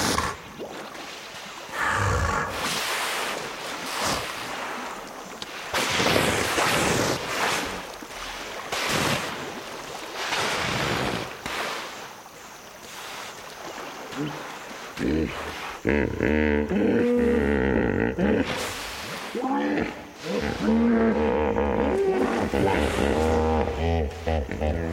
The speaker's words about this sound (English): … watched about 20 hippos at dusk emerge from the river for dinner. He recorded their chatter, which can be found along with other recordings of wildlife on his CD….